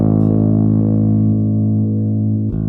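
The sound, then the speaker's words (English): A sustained, buzzy bass note runs through a filter modulated by a sawtooth wave that slowly closes, dulling its brightness, then snaps open again near the end in a sawtooth-like ramp. Loud and steady, with no voices. “Like sawtooth.”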